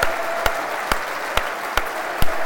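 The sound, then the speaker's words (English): A whole stadium crowd at a Millwall match against Blackburn applauds in a minutes-long tribute, a steady, dense wash of clapping, with sharp louder claps punching through at a regular beat about twice a second. No one speaks. “Whole stadium applauding, this is.”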